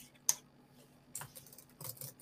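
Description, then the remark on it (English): A few soft, scattered clicks of computer keyboard keys being pressed, irregular and unhurried, with short pauses between taps and no talking. “Really, stop typing on my computer, buddy.”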